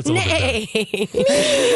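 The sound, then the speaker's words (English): A person's voice, attempting a horse impression, imitates a goat, giving a wavering, nasal bleat that breaks into short pulses and then stretches into a longer quivering cry, loud. “First of all, he said nay, and you're doing a goat.”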